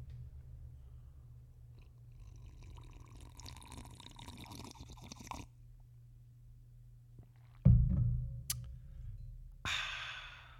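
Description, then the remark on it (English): Black coffee pours steadily for several seconds, then a loud slurping sip of it follows, ending in a satisfied exhale. No one speaks. “For right now, as always, I'm going to have black coffee.”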